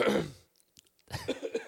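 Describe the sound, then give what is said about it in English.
A loud coughing fit: one harsh, raspy cough, a brief pause with a few faint catches of breath, then a quick run of rough coughs. “Tell them where they can find us while I have a coughing fit.”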